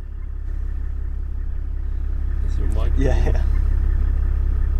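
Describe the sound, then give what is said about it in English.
A car drives slowly with a steady engine rumble throughout, and a brief burst of brushing, swishing noise rises near the middle as it pushes through really tall, thick Kalahari sour grass that envelops the car. “We're driving through this really tall, thick grass that kind of enveloped the car.”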